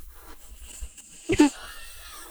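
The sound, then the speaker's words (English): A cat gives one short, raspy snore, a brief snorting breath that rises clearly above an otherwise quiet, faintly hissing background. “Because my cat is right here. Yeah. And is snoring loudly.”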